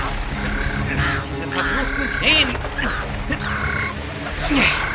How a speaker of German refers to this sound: Es waren Krähen.